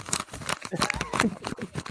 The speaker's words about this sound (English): That's paper getting tossed around because I'm studying.